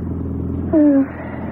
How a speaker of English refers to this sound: Funny to think of us chunking along in this old car with the trailer behind us, and everything we have in the whole wide world is here.